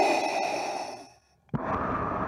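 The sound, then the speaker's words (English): Heavy, hissing respirator breathing through a mask in a trailer, the breath of Hayden Christensen's character: a long, loud exhale fades into a brief pause, then a sharp inhale starts abruptly, with no talking. “We hear the breathing and we get the music.”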